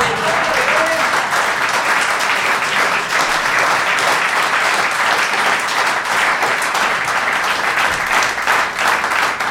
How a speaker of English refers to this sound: Was or that slow hand clap? Was that slow hand clap?